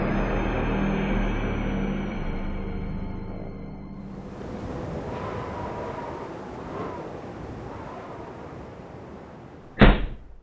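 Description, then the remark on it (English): A woman slams a door: a single sharp, loud, abrupt slam lands near the end, after a long stretch of steady low rumble and hissing background noise with no talking. “My good woman, must you slam doors?”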